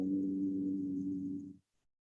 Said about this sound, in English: Become aware of the vibrations in my voice. Become aware of the vibrations of hum.